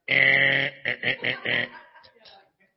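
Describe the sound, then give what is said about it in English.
A voice reading scripture imitates a basketball-style penalty buzzer after the word 'nay': a loud, raspy, sustained buzz followed by four quick choppy bursts, then a faint trailing murmur. “I hear a penalty buzzer like a basketball game.”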